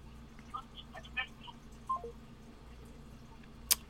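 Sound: phone line tones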